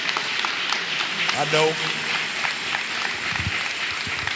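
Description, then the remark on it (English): An audience claps in praise to God, a steady, dense, even crackle of many hands that holds its level throughout, with a brief rising vocal whoop or cheer rising out of it midway. “Let's give God a clap off and a praise.”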